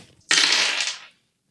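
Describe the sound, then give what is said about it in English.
A burst of dice being rerolled after a story point is spent: a bright, dense rattle that starts abruptly and clatters for under a second before fading out, with no voices over it. “Do I reroll all the dice?”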